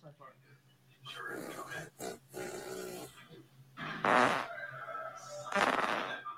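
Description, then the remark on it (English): Several loud, raspy fart noises burst out in quick succession, the last two longest and most forceful, with snuffly breathing and low growly sounds between them. “guess my fart.”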